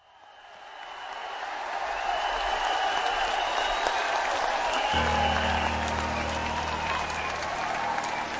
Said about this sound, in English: Thought there was enough applause there for you.